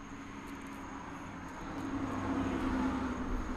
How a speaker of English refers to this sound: Man, this traffic. It's midnight.